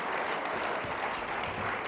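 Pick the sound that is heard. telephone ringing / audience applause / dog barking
audience applause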